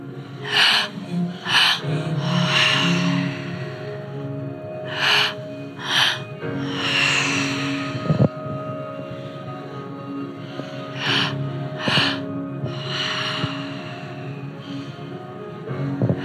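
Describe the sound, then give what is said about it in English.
Deep, rhythmic breathwork breathing, loud, with forceful inhales and exhales repeating in a steady cycle over a low background drone; no one speaks. “So you're just committing right now to breath.”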